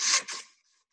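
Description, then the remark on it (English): Scissors cutting paper snip twice in quick succession, each cut a bright, raspy scrape that fades into near silence. No one speaks. “Scissors.”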